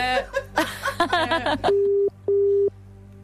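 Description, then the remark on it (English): A brief burst of voices gives way to a phone ringing tone: two steady electronic beeps with a short gap between them, clear, as an outgoing call is placed to a woman. “I'm going to phone a female if that's okay.”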